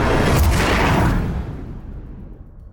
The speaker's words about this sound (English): And it's all swirling around you in this giant vortex until you find yourself in a crashing, huge explosion of sound.